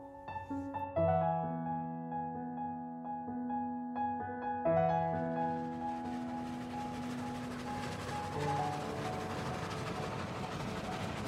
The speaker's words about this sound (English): The train passes through Cumberland. I could get off at Kendal and have a look.